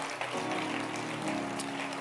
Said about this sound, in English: One of the blessings we have in the UD, you can rise your feet and clap your hands. Why not? Keep clapping your hands. Glory to God.